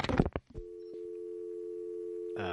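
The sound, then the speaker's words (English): A steady, continuous telephone dial tone hums for about two seconds, preceded by a few brief clattering bursts like a receiver being handled, with no voices present. “Is that a dial tone?”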